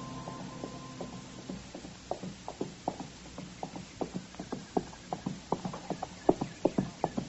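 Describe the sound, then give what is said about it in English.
A horse's hooves clip-clop in a steady walking rhythm, growing slightly louder as the animal approaches along a trail, with no voices present. “And just then I heard a horse coming along the trail and I stepped back and waited.”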